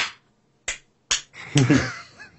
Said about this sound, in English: gotta look for those three slaps in an hour-long video.